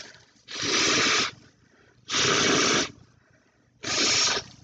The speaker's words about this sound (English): Goddamn, I need to blow my nose or something. Ugh. Hold on 1 second. Give you this nose ASMR.